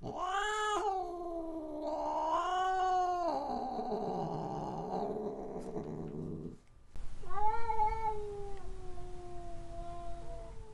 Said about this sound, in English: Cat or feline.